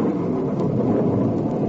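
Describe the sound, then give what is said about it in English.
A storm breaking with rain: a steady, dense roar, with low rumbling thunder and the hiss of rain blending into one loud continuous wash, no voices. “A storm's breaking! And it's raining!”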